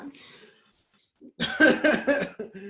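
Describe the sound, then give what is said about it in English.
A soft breathy intake, a short pause, then a loud, voiced, groaning yawn that swells in several pulses before tapering into a brief low murmur. “That was our transition. My yawn.”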